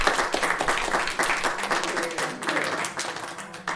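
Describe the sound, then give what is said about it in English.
An audience at a poetry event bursts into sustained applause for the poets, a dense wash of many hands clapping at steady loudness for several seconds, with faint murmuring voices mixed in. “Please give the poets another big hand of applause.”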